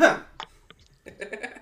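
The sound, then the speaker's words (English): A sharp cough bursts out at the start, followed by a couple of small throaty catches, before a voice begins talking quietly underneath. “You can cut out that cough.”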